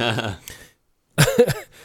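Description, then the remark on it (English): A brief, strained cough after sipping whiskey with ice erupts after a moment of quiet, two quick harsh bursts, preceded by a soft voiced murmur. “I think, whoa, that's my first whiskey cough, I think.”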